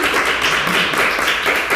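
Steady applause from a small group, dense overlapping hand claps filling the moment at a fairly loud, even level with no talking.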